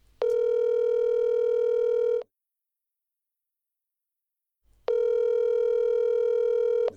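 An outgoing phone call's ringback tone, a call to the speaker's son-in-law: two long, steady electronic tones about two seconds each, separated by a pause of silence, loud and clear with no talking.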